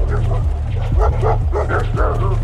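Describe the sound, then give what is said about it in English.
Several dogs bark and yip repeatedly in an excited, overlapping chorus, loud, with a steady low rumble running underneath. “When they got about halfway there, they could hear dogs barking, a posse was forming.”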